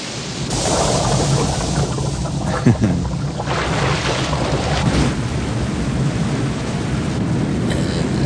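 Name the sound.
rushing waterfall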